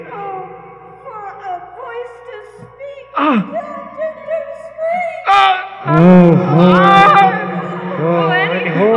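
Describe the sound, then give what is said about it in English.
A man lets out anguished, wavering vocal cries that rise into a loud, strained shriek, sustained, with pitch sliding up and down over several seconds and no clear words. “With a shriek, I rushed from the margin.”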